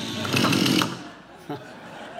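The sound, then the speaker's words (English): A Stihl Farm Boss chainsaw, run in a backyard in the morning during disaster relief work, revs in a short, loud, raspy burst, then idles down to a quieter rumble with a brief sputter near the end. “The sound of a farm boss still chainsaw in the morning.”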